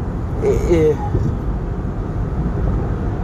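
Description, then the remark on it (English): A loud car rumbles past with a steady, heavy low-end roar that fills the whole stretch, while a brief voice-like sound surfaces near the start. “I hate people that make their cars unnecessarily loud.”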